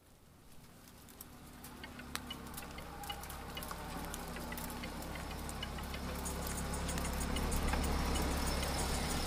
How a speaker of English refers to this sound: Freezing rain came down as I pulled into the Praxis parking lot. There were only a few cars in the parking lot, so I was guessing that due to the weather, there weren't going to be many people in the building.